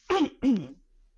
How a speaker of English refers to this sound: Sorry. Let me just clear my throat and you take a little sip of water.